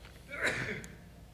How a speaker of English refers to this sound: Gesundheit.